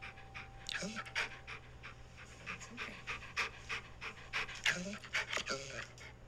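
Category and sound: animal, dog panting heavily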